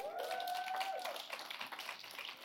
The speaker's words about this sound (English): Thank you, praise team. What a wonderful time of worship and praise today. Give them a hand clap.